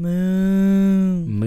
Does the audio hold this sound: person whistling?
no